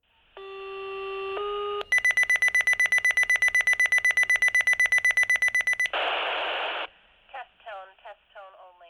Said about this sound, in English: Even if it isn't your turn to answer the call, the fire station alarm is so piercing that sleeping through it isn't an option.